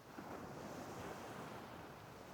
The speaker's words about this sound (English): And as you walk along the beach, along the waves gently going up and down onto the sand, you can go into the sea as much as you like.